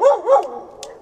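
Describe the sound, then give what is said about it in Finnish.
A dog that has arrived in the neighbouring yard lets out two quick, fairly loud barks in succession, followed by a short fading tail and a faint click; no voices are heard. “Nyt täällä on pieni tilanne. Naapuripihaan saapui koira.”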